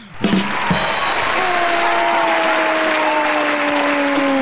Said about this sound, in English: We actually have a crowd going wild.